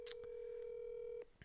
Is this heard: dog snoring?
no